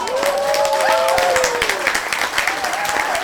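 A crowd applauds steadily with dense, overlapping clapping, while a few cheering voices and a rising whistle-like tone ring out over the noise, fairly close and loud throughout.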